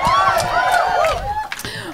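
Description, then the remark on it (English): A standing audience cheers and whoops loudly, with overlapping high voices rising and falling over a steady wash of clapping that holds for the full two seconds. “I live and die by applause.”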